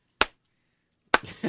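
slow clap

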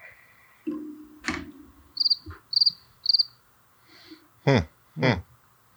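cricket chirping

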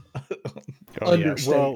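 person coughing

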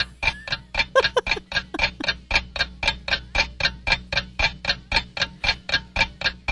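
clock ticking

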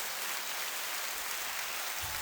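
clapping hands

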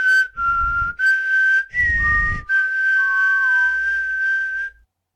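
person whistling

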